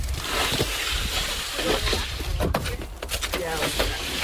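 Splashing and sloshing of water as paddles dip and pull, with irregular strokes and drips over a steady watery wash, as a canoe is paddled south and west, with the tide but against the current, on Northeast Creek, a tidal freshwater marsh.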